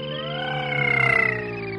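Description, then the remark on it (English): A voice imitates the flying car from The Jetsons with a steady, buzzy hum that glides slowly in pitch, swelling midway with a fluttering wobble before settling back, with no other talk. “No, but you remember the sound that the fucking Jetson car made? Yeah. It would be like this.”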